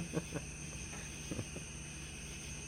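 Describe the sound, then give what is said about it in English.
Crickets chirp in a steady, high-pitched drone that runs unbroken throughout, fairly quiet, with a few soft low thumps scattered underneath. “While the crickets sing alone in the background.”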